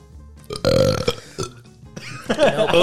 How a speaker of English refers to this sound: I can burp on command, okay? So that's enough.